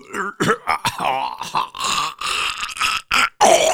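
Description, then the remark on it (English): A string of rough, raspy coughs and throat-clearing bursts in a studio, about eight in quick irregular succession, fairly loud and with no talking over them. “And he's muting his mic, and there comes the cough.”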